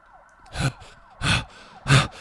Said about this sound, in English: Can we put down the police siren here? Okay, put down the police siren.